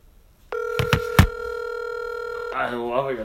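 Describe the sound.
A steady telephone tone hums for two seconds while three quick keypad taps click through it as an outgoing phone call is dialed, then the tone cuts off and a person starts talking.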